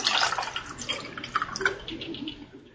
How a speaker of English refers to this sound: Here we go, guys. A little something something. A little Jameson. I'm just pouring it real light. That's how I kind of do.